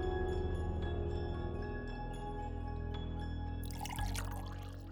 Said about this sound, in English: Edith pours me a cup of coffee.